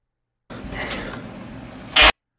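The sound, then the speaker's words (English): A drawn-out, raspy fart of about a second and a half, played in a video, sputtering steadily before ending in a louder, hissy burst. It comes through clearly on its own, with no talking. “Oh my god, are we just watching fart videos now?”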